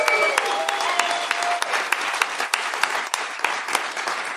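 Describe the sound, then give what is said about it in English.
A massive live crowd applauds steadily, a dense wash of many hands clapping with a few sharper individual claps standing out, sustained at a fairly even loudness throughout. “No, I just want to give a big shout out to the crowd here. We have a massive crowd here.”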